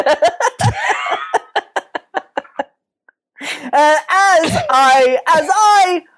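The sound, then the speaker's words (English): A string of sharp coughing bursts that quicken and fade, then a short pause before a longer strained, voiced fit of coughing or laughter-like sounds. “Like, so when the other two people you pod with are talking about something, you want to interject with maybe something you're randomly watching and then cough.”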